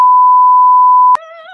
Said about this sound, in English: I can beep out the password.